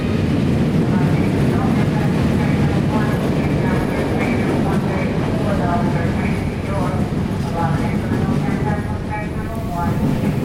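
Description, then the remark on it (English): Busy train station ambience: a loud, steady rumble of a train rolling through, with indistinct murmuring voices of a crowd mixed underneath throughout. “Train Station.”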